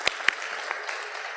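A crowd of people clapping together in a steady, dense patter for a graduate called up on stage, with a few sharper claps standing out near the start, moderately loud and with no voices over it.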